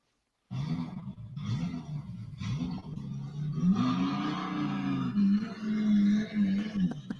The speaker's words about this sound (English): That's a terrible race car sound that I tried to find. I didn't spend a lot of time on that, just like I didn't with the questions.